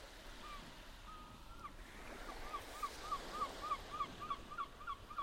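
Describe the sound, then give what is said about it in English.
Ocean waves wash in a steady, moderately loud roar, with a quick series of regular, high chirps repeating over the second half. No one speaks. “The day greets you with the fresh brine air of the ocean”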